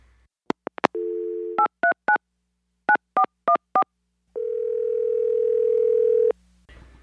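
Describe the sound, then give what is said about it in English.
A phone line opens with a few clicks and a steady dial tone, then a string of short touch-tone beeps in quick bursts as a call to a guest is dialed, followed by a long sustained ringback-like tone that cuts off. “We're going to see if we can get him on the phone. Let's dial him up.”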